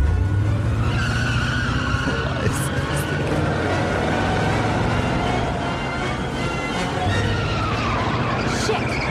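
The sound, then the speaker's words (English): A Buick's tires screech loudly and continuously as it speeds off, accelerating hard, the engine roaring beneath the squeal for several seconds before the sound gradually eases. “Liza Minnelli stole our Buick?”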